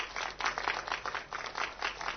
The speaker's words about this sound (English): Can we stand and clap? Or bless the Lord. You want to clap with me?